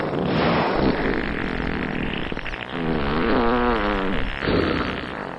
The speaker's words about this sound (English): I hate to say this, but I think they're farting at us. It's a whale fraternity, a gesture of fraternal flatulence.